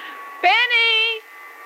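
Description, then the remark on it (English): A vacuum cleaner whines into life with a rising motor hum, runs steadily for under a second with a brief dip, then cuts off, leaving a faint background hum. “We won't put you to work with a vacuum cleaner.”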